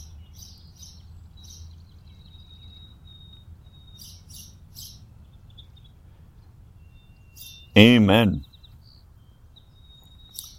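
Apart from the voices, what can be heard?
birds chirping outdoors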